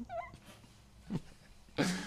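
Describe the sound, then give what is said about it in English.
A puppy whimpers softly, starting with a thin, wavering high whine, followed by two short, sharper cries a moment apart, fairly quiet and with no one talking. “Oh, poor puppy.”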